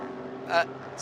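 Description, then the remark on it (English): A dark grey and gold number five race car's engine drones steadily, then swells in a brief loud rush as it crests the hill at turn five and passes by, with a voice talking over the noise. “The dark grey and gold number five crests the hill at turn five.”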